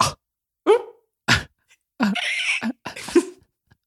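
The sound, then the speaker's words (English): A person makes a quick run of short, squeaky vocal yips, about five bursts, imitating a cartoonish video game animal character's chattering voice, with brief silences between them. “What I was doing was more of a squeak.”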